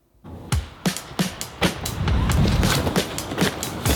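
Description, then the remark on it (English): Drums in a music track: a steady run of sharp, bright hits with deep thumps underneath, repeating roughly twice a second over a dense, busy musical backing, with no voices. “Let me play this a little bit again. Listen to the drums here.”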